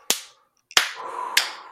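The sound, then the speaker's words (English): Three sharp, slow hand claps spaced about half a second apart, each a crisp smack with a short decay. A faint sustained tone lingers beneath the last two. “This isn't a sarcastic clap, even though it's slow.”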